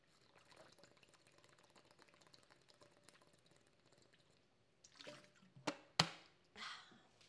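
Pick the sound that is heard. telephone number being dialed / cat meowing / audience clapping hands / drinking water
drinking water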